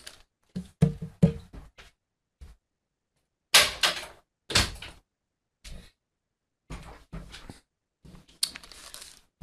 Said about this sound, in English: And just a moment, the door here got open, just a moment.